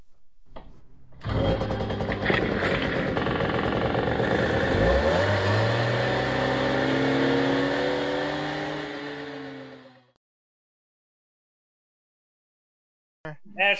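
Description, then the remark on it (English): A small moped engine buzzes loudly for about nine seconds, its pitch climbing and dropping as it revs, then cuts off abruptly into silence before a brief clatter at the end. “Let's not forget, mopeds are dumb.”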